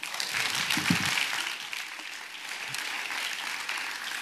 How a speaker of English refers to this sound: Can we clap